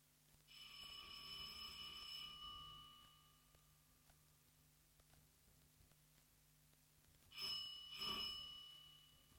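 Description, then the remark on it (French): A doorbell rings with a bright, metallic trill lasting about two seconds, then falls quiet before two shorter rings follow near the end, over a steady low hum and no talking. “Il sonne.”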